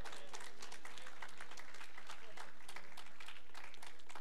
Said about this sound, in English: Someone give Jesus a hand clap of praise.